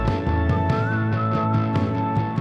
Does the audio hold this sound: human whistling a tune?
yes